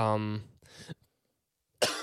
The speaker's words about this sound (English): that was a very. Aggressive cough. It snuck up on me.